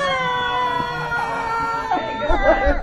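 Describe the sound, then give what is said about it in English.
A voice imitates the piercing scream of a zombie, a sustained, shrill, harmonic-rich cry that holds steady before wavering and breaking into warbling, rising squeals near the end. “Barely in this room right here, suddenly there's this impenetrably piercing scream comes out.”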